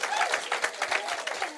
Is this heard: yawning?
no